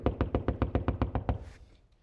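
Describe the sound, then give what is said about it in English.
A quick, steady run of about ten firm knocks on a door, evenly spaced, then a short fading tail of background noise; no voices. “But aren't you glad God loves you so much that when you become messed up, and when you become broken, and you're in your failure, aren't you glad God's got a preacher to come to where you're at and rap on the door?”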